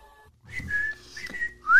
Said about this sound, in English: My whistle doesn't work as well as it used to when I was younger.